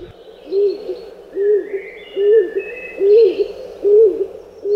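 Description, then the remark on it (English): A stock dove's low, single-note coo repeats steadily about every 0.8 seconds, clear, with faint higher birdsong chirping in the background. “He knows that a wood pigeon has five notes, a collared dove has only three, and a stock dove has but one. Ooh, ooh, ooh, ooh, ooh, ooh, over and over again, the single note repeated.”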